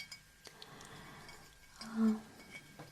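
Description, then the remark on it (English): A glass bottle holding a special ingredient clinks lightly against a new glass a few times, short bright taps, followed by a soft resonant ring and faint pouring-like rustle as a little is poured, with no talking. “I'm going to pour a little bit in a new glass.”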